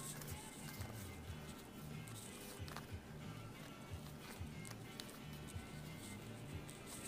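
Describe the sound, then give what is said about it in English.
Soft, continuous papery shuffling of a deck of tarot cards, a steady rustle with small flicking clicks, quiet, with no voices. “You gotta make sure you get a good shuffle, right?”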